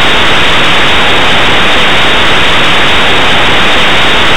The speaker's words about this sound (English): That was … just calling in, and the static was really bad